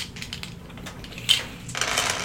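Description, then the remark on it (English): Dice rattle and clatter, with a run of light clicks, a sharper knock midway, then a denser burst of rattling at the end as they are shuffled and tumbled. “Got the good dice and the bad dice.”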